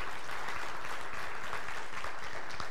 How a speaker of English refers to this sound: They are our new associate pastor for our church. Can we give them a huge cheer? Especially, I know they tune in a lot.